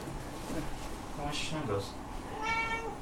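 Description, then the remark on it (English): A cat rolling around on the floor meows several times, drawn-out vocal cries with bright harmonic bands, over a low steady background hum and faint murmur of voices. “Let's just keep going while the cat's just meowing.”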